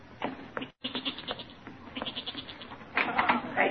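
goat bleating

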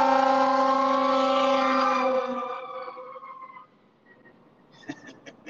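fire engine siren passing

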